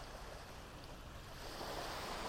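Steady, continuous surf washes ashore with a broad rushing hiss, a soft low rumble underneath and a slight swell toward the end; an open beach ambience with no voices.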